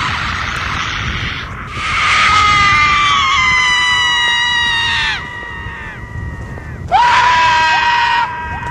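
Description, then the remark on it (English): Loud, shrill screaming rings out from the woods in two long, drawn-out bursts, each wavering and sliding downward in pitch, with a brief lull between them over a steady noisy background. “In that same thought, a loud scream came from the woods.”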